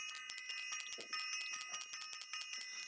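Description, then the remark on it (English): A bright metallic bell rings rapidly and continuously for a few seconds, its sustained shimmering tone struck again and again in quick succession, fairly loud with no talking. “Let me ring the bell.”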